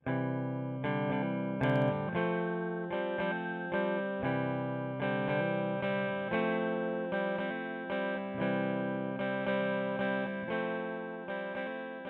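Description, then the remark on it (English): A clean electric guitar strums simple chords in a steady, repeating rhythm, a simple strumming pattern filling out a song arrangement, each strum ringing briefly before the next. It plays alone, moderately loud, with no voices. “Next are two electric guitars with a more simple strumming pattern to fill it out more. One of them is clean.”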